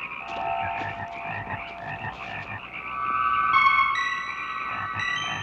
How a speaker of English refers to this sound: Cut shot to more bullfrogs.